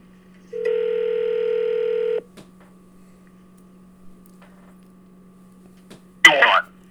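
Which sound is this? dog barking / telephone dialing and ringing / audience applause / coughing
telephone dialing and ringing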